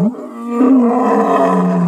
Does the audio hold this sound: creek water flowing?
no